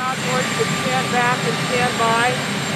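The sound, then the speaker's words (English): A loud, steady helicopter engine whine and rumble, with indistinct voices talking underneath throughout, as President Trump heads to the helicopter on the way to a rally and is asked about his comment. “But what we got instead was, on the way to a rally, he's heading to the helicopter, President Trump is asked about his comment, and I'll play his answer for you.”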